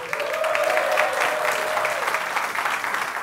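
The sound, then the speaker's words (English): An audience at the Crawford applauds steadily, a dense, continuous wash of many hands clapping at an even, fairly loud level for about three seconds, with no talking over it. “But before we bring out our guests, let's give a big round of applause to the fantastic audience here at the Crawford.”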